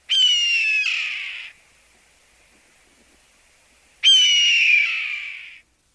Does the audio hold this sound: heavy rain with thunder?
no